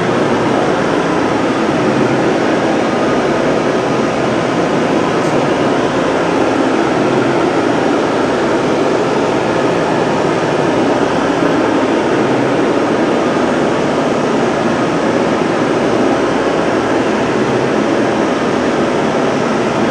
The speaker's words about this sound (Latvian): Šis ir rozā troksnes. Šis ir rozā troksnes un tas rādījums mums ir 87 decibeli.